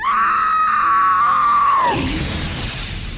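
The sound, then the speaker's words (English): A queen lets out a long, loud, sustained scream of horror at the sight of her burning child during a ritual in a palace chamber, holding steady for about two seconds, then breaking off into a rumbling, noisy crash-like wash that fades slightly. “She found the chamber, rushed inside, and screamed out in horror at the sight of her burning child interrupting the ritual.”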